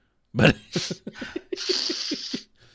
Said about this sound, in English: I'm going to sneeze.